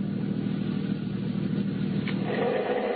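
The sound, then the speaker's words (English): A taxi's engine rumbles steadily, a low continuous drone of the car driving along in a downtown district and stopping at a red signal, with no voices over it. “What are you stopping for? The signal, mister. It's red.”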